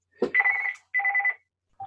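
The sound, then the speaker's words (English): A telephone rings with a bright, trilling electronic tone in two short bursts, followed by the clipped start of a third. The ringing is clear, with no voices. “Is that June on the phone?”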